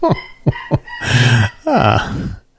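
A new puppy in the house yips in the background three times in quick, sharp bursts, then lets out two longer, high-pitched whining yelps that slide downward in pitch. No one speaks.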